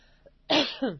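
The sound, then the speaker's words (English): A person clears their throat loudly, a harsh rasping burst followed by a second shorter one after a brief quiet lead-in, with no talking. “Excuse me, I'm going to have to clear my throat here.”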